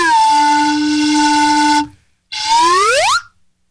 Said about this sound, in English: Slide whistle, please.